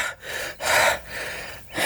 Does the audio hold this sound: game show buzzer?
no